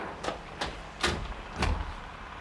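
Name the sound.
window being opened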